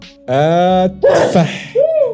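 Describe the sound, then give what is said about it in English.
A single loud sneeze from a man: a drawn-out voiced intake builds up, then bursts into a sharp, breathy explosion, followed by a short trailing vocal sound. “He sneezed, by the way, to our listeners.”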